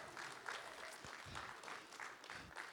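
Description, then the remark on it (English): A church audience applauds the Sunday school children with steady, dense clapping that holds at an even, moderately loud level for a few seconds, with no voices standing out above it. “Can I have the congregation give them a round of applause?”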